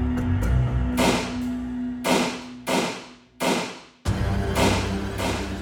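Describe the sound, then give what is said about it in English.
Six sharp bangs ring out at irregular intervals, each with a short, echoing decay: multiple gunshots fired in a urologist's office, muffled by the doors and walls. A steady low hum runs underneath and no one speaks. “continued helping other patients when multiple gunshots rang out”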